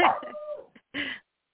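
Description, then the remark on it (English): A pet dog, set off by the noise of its own collar as it shook, lets out a drawn-out, slightly falling bark, a tiny yip, then a second shorter bark. The barks are fairly loud and clear, with no talking over them. “Her collar was making noise, and she started barking.”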